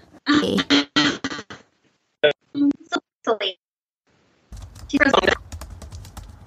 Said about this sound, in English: That's me typing them a message telling them I'm going to try and restart my Wi-Fi.